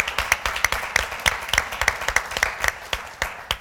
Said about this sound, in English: I was going to say, well, give everybody a clap.